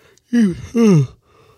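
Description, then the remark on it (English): A loud yawn from one person, voiced in two drawn-out breaths that slide downward in pitch, with a brief catch between them and quiet afterward. “Damn, the yawn's been getting me.”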